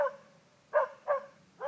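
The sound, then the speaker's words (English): A dog barks several times in quick succession from behind the listener, short sharp woofs spaced a fraction of a second apart, moderately loud and clear with no talking over them. “Can you tell which direction the dog is coming from?”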